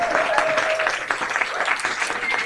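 An audience applauds a poet and author introduced as a guest on a show, dense overlapping claps filling the whole stretch at a fairly loud, even level, with a faint murmur of voices mixed in.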